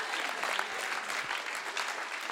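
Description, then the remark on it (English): An audience claps together, a dense, steady patter of many hands with a bright, crackling texture that holds at an even level throughout. “If you're feeling jealous, you don't have to clap.”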